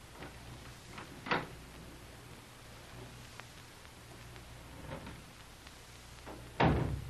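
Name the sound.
door being opened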